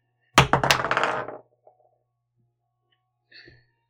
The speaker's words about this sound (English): You rolled a die that was higher than 8.